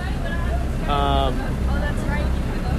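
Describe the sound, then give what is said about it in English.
Steady, loud rumble of a boat motoring across water, with wind and splashing mixed in the whole time and brief muffled voices rising over the drone. “We're on a boat on our way to another place.”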